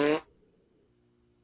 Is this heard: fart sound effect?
yes